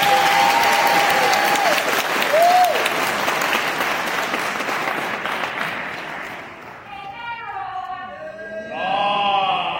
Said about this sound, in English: Clap it up for him one more time.